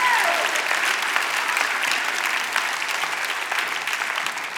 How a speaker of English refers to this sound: Now put your hands together like somebody's free in the house today. Come on, give them a clap of praise.